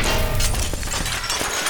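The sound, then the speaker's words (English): A loud crash of heavy metal chains thrown against a wall, followed by bright shattering and scattered clinks of breaking glass from a part of the wall that is glass painted over, dense, with no voices. “Eagle Nine, we heard glass breaking.”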